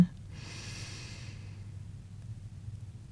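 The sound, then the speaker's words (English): A slow, deep breath drawn in during a guided breathing exercise, a soft airy hiss that swells and then fades over a couple of seconds against a low steady rumble. “Join me in breathing in and out very slowly.”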